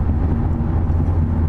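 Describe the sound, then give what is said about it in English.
A steady, low road rumble fills the whole stretch as a car cruises in heavy Sunday highway traffic in Lancaster County on a nice day, heard from inside, with constant engine and tire drone and no talking. “There, he just passed two more on his shoulder.”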